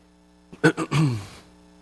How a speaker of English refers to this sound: I'd use a cough drop for this cough. The problem is the reason I'm coughing is I just choked on my cough drop.